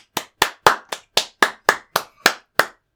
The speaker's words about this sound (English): You know, I really do appreciate the clap, but it feels like wet flannel.